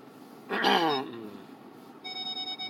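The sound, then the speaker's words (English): A car's reversing sensor beeps in quick, evenly spaced pulses over the last second, a steady electronic tone, preceded by a brief louder sliding tonal sound against low cabin noise. The car is turning around on a country road, and the sensor is reacting to a cornfield. “Sorry about the backup alarm.”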